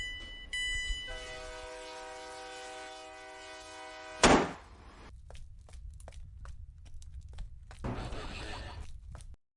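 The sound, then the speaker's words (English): A train rumbles steadily while its horn blares in a long sustained blast, then a sharp loud burst cuts through before the heavy clattering rumble carries on without the horn. “It's the gun train.”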